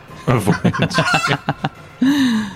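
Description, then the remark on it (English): A person imitates a chicken, first with a quick string of about ten clipped clucks, then a drawn-out crowing call, loud with no other sounds. “A void chicken of all things.”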